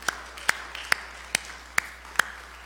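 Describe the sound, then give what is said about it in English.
An audience claps hands unto the Lord to thank God for his word, in a steady, even rhythm, six sharp claps a little over two per second, crisp and moderately loud, with no voices over them. “Let's put our Bibles down, clap our hands unto the Lord, and thank God for his precious word today.”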